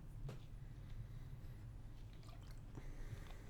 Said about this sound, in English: I was waiting for him to finish his water. Really? Because I was trying really hard to make sure it wasn't audible.